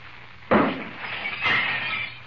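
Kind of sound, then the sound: impact, glass pitcher shattering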